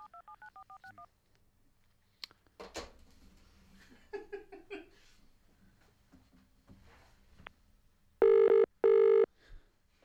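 A quick string of touch-tone dialing beeps opens as a 95 BFM Drive radio host dials a caller, followed by faint background murmur, then two loud, steady ringing tones of the outgoing phone call, clear.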